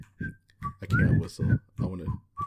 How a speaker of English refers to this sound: I can't whistle. I'm not built for it.